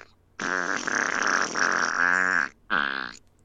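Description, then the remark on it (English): A loud, drawn-out fart sputters for about two seconds, pauses briefly, then finishes with a shorter buzzy burst; prominent with no talking over it. “I guess we've like entered into the fart jokes now.”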